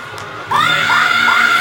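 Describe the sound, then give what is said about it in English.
A festival crowd bursts into loud, sustained screaming after a brief quieter moment, with high shrieks rising again and again over a dense roar of voices. “Oh yeah, scream, baby.”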